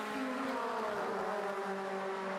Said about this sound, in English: Extraordinary sights and sounds. We have got a pack of cars, which I think actually is the top 11 at the moment. We have not had the intervention of the safety car. There's nothing that's pulled this pack together.